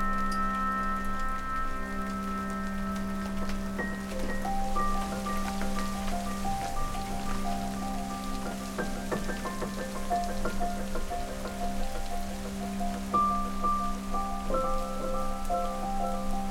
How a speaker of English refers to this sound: We got inside just as the first big, heavy drops started coming down around us.